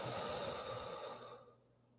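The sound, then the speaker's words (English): A single long, breathy exhale through the mouth during a guided breathing exercise, after breathing in through the nose, fairly quiet, fading out steadily over about a second and a half with no talking. “And out through the mouth.”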